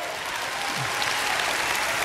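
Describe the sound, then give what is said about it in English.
A crowd claps steadily as a clap offering, a dense, continuous applause, a broad crackling wash of many hands that holds an even loudness throughout, with no voices standing out. “Oh no, give a great big clap offering.”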